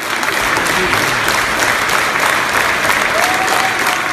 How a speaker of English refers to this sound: An audience erupted in applause when he took to the stage after a performance of his production of Dead Souls this week.